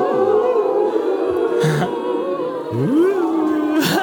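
Someone takes a big, loud gulp of a drink, with low throaty swallowing sounds and two sharp wet bursts as the liquid goes down. No one speaks.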